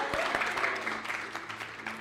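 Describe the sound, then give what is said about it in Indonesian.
An audience claps steadily, a dense patter of many hands at a fairly even, moderate level that holds for the whole stretch without building or fading. “Come on, tepuk tangan dong.”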